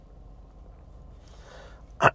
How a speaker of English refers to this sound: Clear my throat.